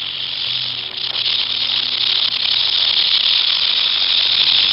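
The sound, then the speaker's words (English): A rattlesnake's rattle buzzes loudly and without a break for several seconds, a dry, high, hissing whir that stays steady from start to finish. “Rattlesnake.”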